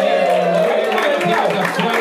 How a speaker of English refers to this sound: Let's have a round of applause for latecomers, ladies and gentlemen.